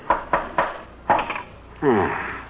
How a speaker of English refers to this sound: But what were you doing with the hammer and nails? What do you mean, what was I doing? All artists do that when they finish painting the canvas. Tacking it onto a wooden frame